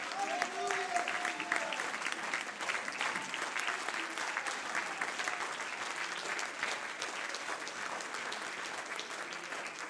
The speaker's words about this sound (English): Come on, stand to your feet and clap your hands unto the Lord.